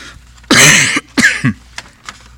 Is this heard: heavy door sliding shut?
no